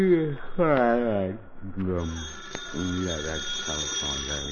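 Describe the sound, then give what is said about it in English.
A telephone rings at night in the Andrews family's home in a radio drama, a call from the police department, in a series of loud, buzzing bursts separated by short pauses, with a thin steady high tone running underneath the whole time. “Answer to the phone.”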